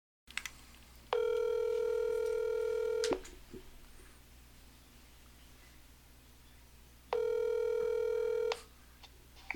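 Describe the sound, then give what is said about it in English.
A phone line ringing out: two long, steady electronic ringback tones, each about two seconds, separated by a pause of several seconds, heard clearly over faint background hum with no talking. “Let me get my phone out. Mm-hmm. Let's give her a call.”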